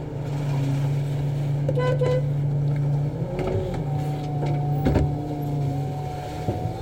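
Steady low engine rumble from inside a truck, with open-window street noise washing in, a brief horn toot, and a rising whine from passing traffic; no one speaks.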